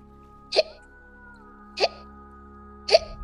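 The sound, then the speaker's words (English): Three sharp hiccups at a steady, slightly spaced rhythm, each a short gulping burst over a quiet background hum, with nobody speaking. “Want to cure your hiccups quick?”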